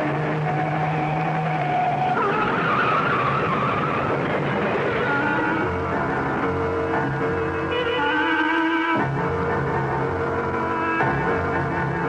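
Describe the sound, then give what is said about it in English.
Car tires screech and skid as a car swerves off the road to avoid a truck, a loud, sustained squeal with shifting pitch over a roaring engine, continuing for several seconds with no voices. “look out! That truck! Turn the wheel! Go off the road!”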